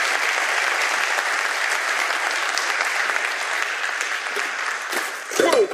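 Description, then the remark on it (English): A crowd applauds a panel as they go back to their seats. Dense clapping holds at an even level for several seconds before tapering off, with a few louder bumps and a brief voice near the end. “If we could give them a round of applause as they go back to their seats.”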